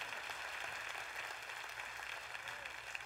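A church audience clapping together after being asked to clap about tithing, a dense, steady wash of many hands that holds at an even level throughout, with a faint low hum running underneath.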